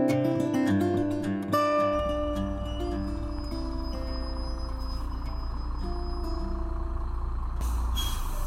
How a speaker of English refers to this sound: The coach bus with 36 students from Northridge Middle School in Middlebury, Indiana, and their 12 adult chaperones has just rolled into Tuscarora Lodge and Canoe Outfitters near the end of the Gunflint Trail for their 2018 Boundary Waters trip.